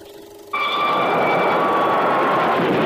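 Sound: train engine running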